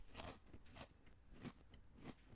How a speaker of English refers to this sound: With a good chew on the mic.